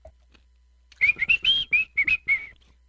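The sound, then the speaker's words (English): A person whistles a short melody of about eight quick, clear notes in a bouncy rhythm, fairly loud, with quiet moments before and after. “Do you want me to whistle Dixie or just lips, a straight? Dixie. Dixie sounds good.”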